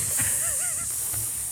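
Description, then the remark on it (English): People imitate snakes with a steady, sibilant hiss that runs unbroken through the whole moment, loud, with a short warbling vocal sound rising briefly in the middle. “We're snakes.”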